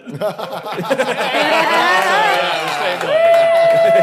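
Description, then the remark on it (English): A loud burst of applause from a live show audience, answering a call to clap if they heard about the show tonight, mixed with cheering and overlapping shouting voices, building into a steady roar, with a sustained high whistle rising over the crowd near the end. “Round of applause if you heard it about it tonight.”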